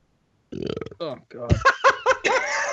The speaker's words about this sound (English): end with the burp